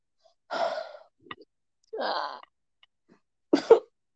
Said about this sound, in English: Almost threw up earlier. Like, some of these coughs make me cough so hard.